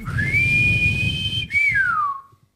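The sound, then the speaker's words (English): A referee's loud, shrill whistle sounds in one long blast to end the match after extra time, then a shorter one that slides down in pitch as it fades, over a low rumble of crowd noise. “This is when the referee blew the whistle, because it's finished.”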